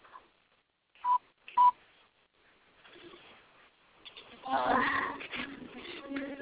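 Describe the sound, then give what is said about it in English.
Two short, bright electronic beeps from toy telephone buttons, pressed about half a second apart, followed by a louder, busier stretch of clattery toy noise and muffled sounds. “Poor phone.”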